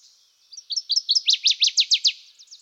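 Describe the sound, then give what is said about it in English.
A large-billed water thrush sings a quick, ringing phrase of about a dozen bright, clear notes that swell louder and faster through the middle, then trail off softly, heard alone. “It is a very quick and vivacious bird and belongs to the class of ecstatic singers.”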